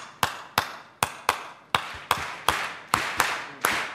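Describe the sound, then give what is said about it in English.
An audience at the Apollo claps together in the clave (La Clave) rhythm, a syncopated pattern of sharp hand claps grouped in uneven threes and twos, each ringing briefly. The claps repeat about ten times with no voices. “So everybody clap with me this rhythm.”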